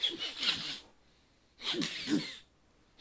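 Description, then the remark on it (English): Two bursts of breathy, hissing sniffing by something at the bottom edge of a door, each lasting under a second and separated by a short pause, with snuffly airy texture and no talking. “Something sniffing. Sniffing at the bottom edge of the door.”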